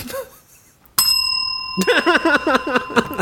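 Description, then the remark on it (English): A single bright bell is struck once to mark someone being right, ringing out clearly, its tone lingering and slowly fading as a person starts talking over it. “Sure, give me a bell for being right.”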